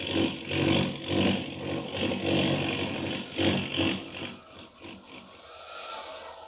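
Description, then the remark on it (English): An out-of-control airplane's engine roars as the plane dives into a tailspin, falling fast, a loud, rough drone with surging swells that eases slightly toward the end. “That plane, it's out of control, falling fast.”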